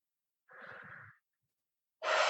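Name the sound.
breathing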